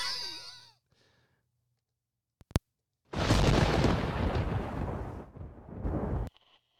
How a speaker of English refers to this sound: And all of a sudden, the music stops, and he's standing in the ring, and the lights go out, and there's a spotlight on him. Cody Rhodes pyro hits.